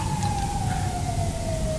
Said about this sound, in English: There's the only one thing that cuts through, and it's bloody police sirens. Okay. Go away. Okay, he's gone. That dustbin car didn't show up at all, but police sirens do, because I suppose that's what they're designed to do.